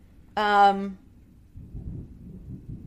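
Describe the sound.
A low rumble of thunder during rain rolls in and lingers for a couple of seconds, following a brief, bright tonal sound like a short electronic voice.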